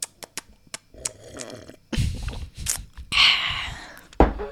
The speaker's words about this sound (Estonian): Ma võtan lonksu selle peale.